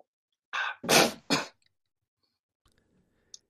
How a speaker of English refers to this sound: He took a vodka swig and like sneezed it out of his nose.